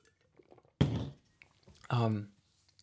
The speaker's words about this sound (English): I'm just going to get a drink of water here.